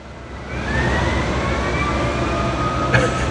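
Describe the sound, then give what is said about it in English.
An emergency vehicle siren wails steadily over a dense rumble of traffic, its tone sliding slowly upward as it grows a little louder while getting closer. “Yeah, for the siren. It's getting closer, I think.”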